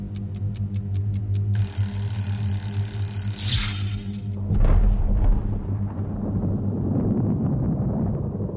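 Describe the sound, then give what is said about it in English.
A clock ticks steadily, then a shrill alarm bell rings for a few seconds before a deep explosion of dynamite and pyrotol set off by blasting caps in Bath booms, followed by a long, low rumble of crackling debris. “Electrons race to their final destination of blasting caps wired to dynamite and pyrotol, waiting to unleash an explosion and horror that not a single soul in Bath was prepared to see.”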